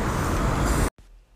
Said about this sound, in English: Here's my bus coming. I'll continue in a little bit.